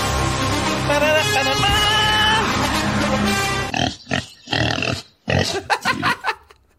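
A pig oinks and squeals loudly and continuously, then breaks into a run of short, choppy grunts and snorts with brief pauses between them. No one speaks.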